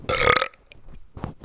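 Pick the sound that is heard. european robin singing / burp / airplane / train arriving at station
burp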